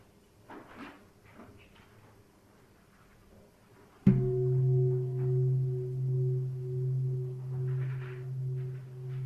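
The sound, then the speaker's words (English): A single strike of a meditation gong, marking the start of a 30-minute meditation sitting, after a few quiet seconds of faint murmuring, then a deep, loud, sustained hum that wavers in slow pulses and keeps ringing to the end. “Okay, one strike of the gong will start the session, and then two strikes will mean the end of the sitting.”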